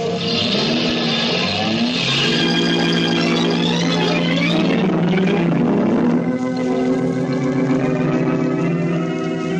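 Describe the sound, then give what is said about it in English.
A car engine roars loudly, revving hard with a shifting pitch as it accelerates away up the street, a steady, continuous growl with no voices. “A car roars away up the street, leaving the body lying there in a pool of blood”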